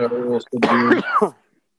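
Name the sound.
coughing and throat clearing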